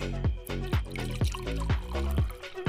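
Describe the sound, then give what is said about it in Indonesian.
Glenfiddich 22-year-old whiskey glugs steadily from a bottle into a glass, a rhythmic gurgle repeating about twice a second with a bright splashing trickle between, and no voices. “Itu Glenfiddich 22 years old ya?”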